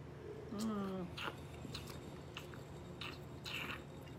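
Mouth sounds while tasting wine: a quiet slurping sip of wine followed by several soft wet lip smacks and tongue clicks, spaced irregularly, with a brief low hum of appreciation near the start.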